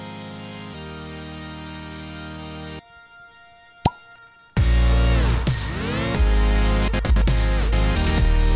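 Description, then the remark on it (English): A single crisp pop of a grappa bottle being opened rings out in a brief quiet pause between loud stretches of music, with no talking. “That little pop you heard in the intro is the very first time both of us have smelled Grappa before.”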